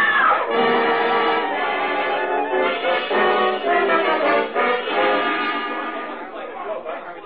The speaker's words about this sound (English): What's that? What happened? Somebody screamed.